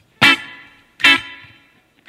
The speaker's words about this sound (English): We can add things to a clean sound to make it sound prettier, like reverb. Here's what reverb sounds like.